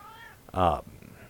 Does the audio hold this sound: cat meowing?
yes